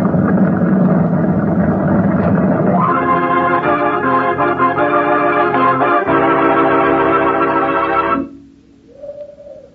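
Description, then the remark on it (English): Motor launches carrying men set out on the sea. They roar with a loud, steady engine drone that shifts to a higher, buzzier pitch after a few seconds, then cuts off abruptly near the end, leaving a faint hum. “All right, men, your launches.”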